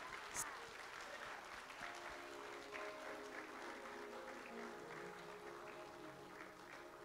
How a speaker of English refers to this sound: I want you to help me welcome, by standing to your feet and giving them a round of applause, the Loved By Him girls from the country of Haiti.